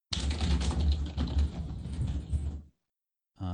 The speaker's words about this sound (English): And I don't know who was just typing, but it sounded like the thunder of God.